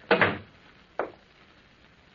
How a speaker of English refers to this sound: He shut the door.